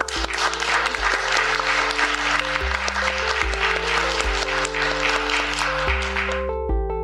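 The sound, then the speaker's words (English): A crowd claps in a dense, steady round of applause for about six seconds while sustained music chords play underneath; the clapping then fades, leaving the music alone at the end. “So the round of applause is for all of us in this room, for the things we care about, for all of you spending this hour with us.”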